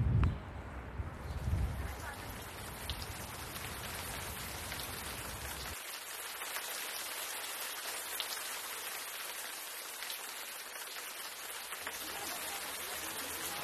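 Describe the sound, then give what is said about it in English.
Steady rain falls across Red Square, an open city square, a dense, even hiss of drops spattering on hard ground, with a brief low rumble near the start and no voices. “Here I'm in Red Square, soaking wet. I don't know where the rain came from, but this is not what we were expecting.”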